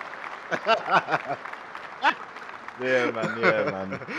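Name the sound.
applause sound effect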